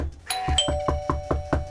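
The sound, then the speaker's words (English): A doorbell chimes, its bright tones ringing on and sustaining, while a rapid, steady series of low thumps pulses underneath throughout. No one speaks. “Who's at the door there? Okay, I'm coming to answer the door now.”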